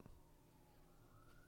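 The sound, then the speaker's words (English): A faint siren wails steadily in the background, its tone slowly rising, heard alone without any talking over it. “Northside Sirens. Northside Sirens, baby.”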